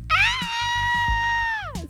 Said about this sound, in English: But see, what had happened was, while he was flying over one of the towns, he heard a person let out a horrific scream.